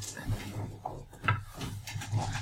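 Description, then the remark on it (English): A wooden chair gets knocked with a sharp, hollow clunk near the middle, while someone searches under a table for a dropped die, over a low steady hum and faint background voices. “Hey, don't break my terrible chairs.”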